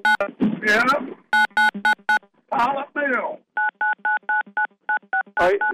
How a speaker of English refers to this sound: Somebody is playing with the phone and trying to dial it.